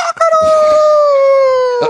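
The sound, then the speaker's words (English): A single long rooster crow from a spin-the-arrow animal toy plays loud, a sustained, slightly electronic call that slowly drops in pitch, with no talking over it. “Oh, do you have the toy where the arrow, you spin the arrow around it and it makes the noise of the animal?”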